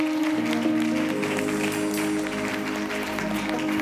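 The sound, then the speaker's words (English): A crowd claps steadily and loudly throughout to celebrate God, a dense wash of many hands over sustained musical tones, with no clear voices standing out. “Doors are being opened as you clap.”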